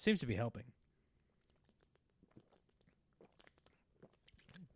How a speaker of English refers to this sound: Sorry. I had to take a huge sip for no reason.